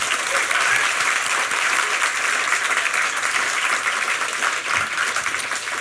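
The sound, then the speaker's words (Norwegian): A large audience applauds steadily and loudly for several seconds for Erling Sandmo, professor of history at the University of Oslo, a dense wash of many hands clapping with no break, sustained throughout. “En stor applaus for professor I historie ved Universitetet I Oslo, Erling Sandmo.”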